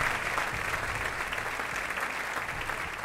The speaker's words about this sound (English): Hey, guys, tonight we are here at High Sign Brewery in Austin, Texas. That's right. Where are the claps? Let's get some clapping up in here. Yeah, there we go. There's the clapping.